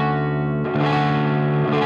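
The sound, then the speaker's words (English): An electric guitar with a Strat sound plays through a pedal turned down to around 11 o'clock, giving a light buzzy grit: one sustained chord rings, then a second chord is struck and held, loud and steady, with no voices. “And see, like, now that's sounding a lot more what the guitar really sounds like to me. It just has a little bit of that buzz.”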